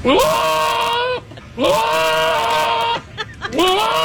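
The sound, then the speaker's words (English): A goat bleats three times in a row, each call long, loud and quavering, with brief pauses between them; no one speaks. The goat comes from Goat 2 Meeting, a service that brings a goat into Zoom calls. “You can have a goat come to your meeting for $100. I have audio of it”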